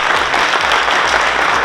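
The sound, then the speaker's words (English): A live studio audience applauds the 24 young people at the end of a series, a dense, steady wash of many hands clapping at once, loud and sustained for the whole short stretch with no voices on top. “Our live studio audience here, give them a clap, ladies and gentlemen.”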